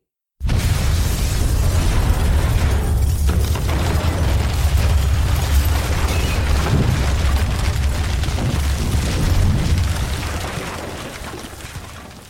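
Vale's boat explodes in a fireball: a sudden loud blast swells into a deep, continuous roaring rumble with crackling texture, holding for about eleven seconds before slowly tapering off. No voices.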